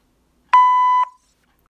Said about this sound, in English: Hello. No one is available to take your call. Please leave a message after the tone.